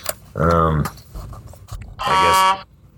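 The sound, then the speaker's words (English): Two loud, blaring horn honks from a truck outside, each lasting about half a second with a brassy, buzzing tone, separated by a short gap of quieter background noise. “I guess there's a truck outside.”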